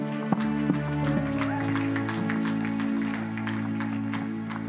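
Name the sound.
round of applause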